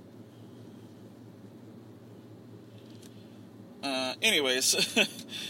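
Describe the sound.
A steady low rumble of tire and road noise inside a moving car runs throughout, fairly soft and constant, with a person starting to speak over it near the end.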